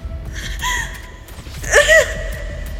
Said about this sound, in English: Cody, he's wheezing.